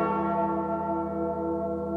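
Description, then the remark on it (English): A large bell rings once, its deep resonant tone with shimmering overtones sustaining and slowly fading, heard alone and fairly loud with no voices. “They go together like the Liberty Bell and its crack.”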